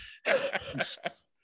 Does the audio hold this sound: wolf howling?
no